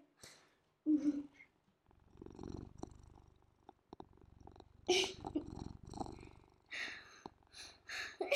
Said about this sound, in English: We'd like to hear some purring from Mackie.